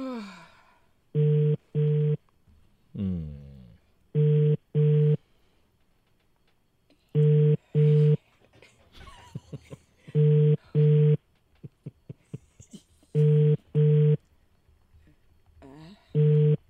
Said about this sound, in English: phone is ringing.